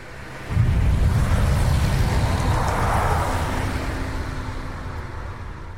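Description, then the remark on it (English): A loud rush of noise from two cars bursts in suddenly and roars steadily, slowly easing off as the cars speed past in a hurry; no one speaks. “Two cars zipped past in a hurry.”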